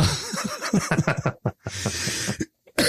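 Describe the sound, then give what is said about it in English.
A sick person coughs in a rough, raspy fit, with breathy bursts and short gaps, ending in a few sharp, separate coughs. “if I am coughing during the show, I do apologize.”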